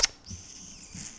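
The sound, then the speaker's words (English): A quick wet smack opens a kissing smooch into a microphone, followed by a thin, high-pitched squeaky tone that lingers for about a second at low volume, with no talking. “We always end by doing a smooch into the microphone.”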